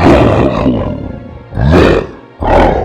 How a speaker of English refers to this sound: lets out a growl and begins to claw out the lion's eyes out of his sockets.